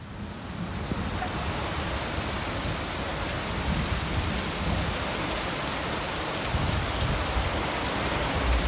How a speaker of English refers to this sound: But when that rain comes, you see how the rain, like, you get the heat, the sun, and the rain will come down, boy, and it's like massive gloops of rain that you think, this is why things just grow here.